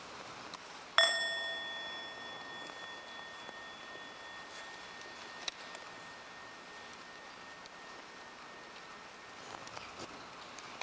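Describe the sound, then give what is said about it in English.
A meditation bell gives a single soft half sound: one light strike whose bright, pure ringing tones linger and slowly fade over several seconds, with no talking. “That is a good time for people to prepare themselves, to stop thinking, to stop talking, and to stop being tense in order to get ready to receive the voice of the Buddha. Half sound.”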